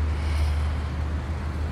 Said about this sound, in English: Maybe even a car driving by. I think that's a school bus, actually.